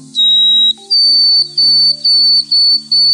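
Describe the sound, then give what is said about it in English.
A throated sparrow's call played from a sound button. Long, steady, high-pitched whistled notes, broken by several brief buzzy bursts at a fairly regular pace, over a low constant hum. No one speaks. “Anyway, the throated sparrow.”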